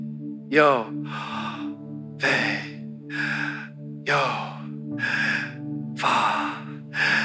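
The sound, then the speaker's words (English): Slow, deliberate breathing alternates exhale and inhale in an even rhythm, about four full cycles of loud breaths over a steady low humming tone. “It's the exhale, inhale, exhale, inhale.”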